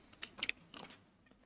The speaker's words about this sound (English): Okay, so I don't have to chew that hard. The aroma is nice.